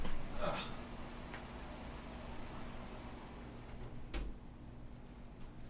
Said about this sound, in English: And maybe we'll shut the door a little bit.